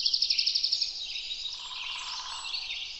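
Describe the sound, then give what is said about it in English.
A quick burst of rapid, evenly spaced woodpecker drumming taps for under a second, then fades into a steady, high, hissing forest background. No one speaks. “The first thing I notice are the territorial drumming sounds of woodpeckers on the trees around us.”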